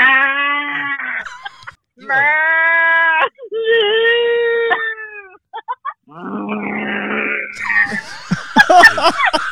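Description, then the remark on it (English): A person imitates a cow, giving several drawn-out, nasal mooing calls in a row, fairly loud, followed by rougher vocal noises and what sounds like laughter. “So yeah, like what sound does a cow make? Moo.”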